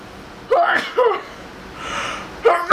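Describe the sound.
Loud vocal build-up of sharp gasping breaths, then a sneeze burst, followed by more voiced gasps or exclamations at the end.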